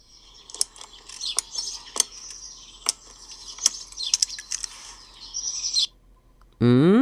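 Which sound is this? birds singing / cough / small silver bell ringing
birds singing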